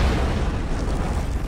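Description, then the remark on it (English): A loud, rumbling explosion boom in a film scene, with a heavy low-end roar that stays dense and sustained for the whole moment, powerful with no voices over it. “There are a lot of explosions for two people blending in.”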